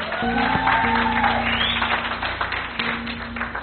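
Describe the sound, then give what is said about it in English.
During a church sermon, an audience claps their hands for intercessors. It is a dense, steady wash of applause lasting a few seconds, with a low sustained organ-like tone and faint voices underneath. “Let's clap our hands for them.”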